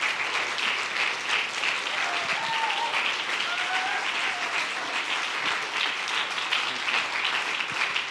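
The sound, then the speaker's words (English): An audience at a Refuge Church service claps their hands in sustained, dense applause, a steady wash of many overlapping claps with faint voices rising here and there beneath it. “Well, let's clap our hands to the Lord Jesus and give him all the praise and all the glory.”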